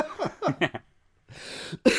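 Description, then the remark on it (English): A few harsh coughs in a quick burst, followed after a short pause by a rough, breathy rasp and one more sharp cough at the end. “All first cough of the podcast.”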